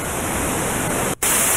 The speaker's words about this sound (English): That's just really static. Good. Just noise. Just noise.